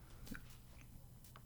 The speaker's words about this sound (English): man, that was a big gulp.